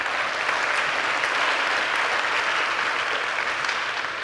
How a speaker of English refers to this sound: So if y'all would, can y'all clap for that? That's amazing.